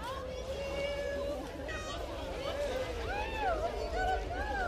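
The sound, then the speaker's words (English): A lively crowd splashes and frolics in the water at the inaugural Plunge for the Cure, a charity event raising money for ovarian cancer at Kitsilano Beach in Vancouver, with overlapping shouts, whoops and excited chatter rising and falling over a steady rumble of waves and wind. “This frolic in the water is from the inaugural Plunge for the Cure held last month at Kitsilano Beach in Vancouver.”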